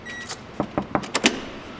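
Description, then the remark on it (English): A door to a machine shop opens with a quick series of sharp latch clicks and clunks, about five in a row, over a quiet background with no talking. “Through a door, there's a machine shop.”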